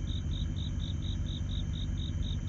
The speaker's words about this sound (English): I thought the crickets in the background would give a very good approach to this show here